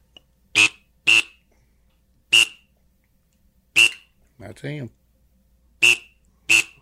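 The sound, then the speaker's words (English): Gadwall (gray duck) call blown on a hand-built duck call, a cracking call with a whistle glued into its end: six short, reedy, nasal blasts in irregular pairs and singles, each loud and abrupt, with a brief spoken remark between the fourth and fifth. “I'm just going to build a duck call. We wanted to get them all. Look here. Here is a gadwall.”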